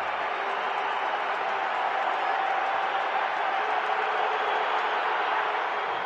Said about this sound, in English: Crowd excited for the chance to get a free chicken sandwich.